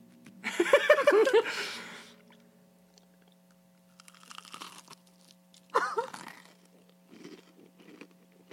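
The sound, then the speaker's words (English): Loud crunching as someone bites into a crispy fried chicken tender, a big burst followed by quieter chewing and a second sharp crunch, with a low steady hum underneath. “Can you hear that crunch?”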